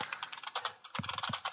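Rapid, clattery typing on a Model M buckling-spring mechanical keyboard, each keystroke a sharp, loud click in an irregular rhythm, with no voices over it.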